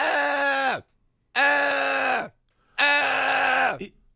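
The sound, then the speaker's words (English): A voice mimics a girl's shrill scream three times, each cry held for nearly a second before its pitch sags and cuts off, with short silent gaps between. Loud and otherwise alone. “this like fucking Dollar General alarm clock of her constant scream.”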